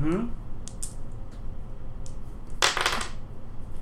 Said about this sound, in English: By all means, roll your dice as close to the microphone as possible.